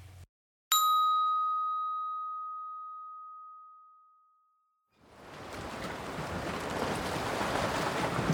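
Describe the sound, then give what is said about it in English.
A single bright chime rings out and slowly fades to silence, then loud ocean surf rushes in, a steady roaring wash of waves breaking on a beach that continues to the end. “I love the beach, don't you? The sand, the sea, the sun, the surf, the smells, the sounds.”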